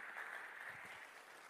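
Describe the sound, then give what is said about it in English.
A steady wash of clapping from a crowd, dense and continuous with no individual claps standing out, fairly faint, with no one speaking. “You're clapping.”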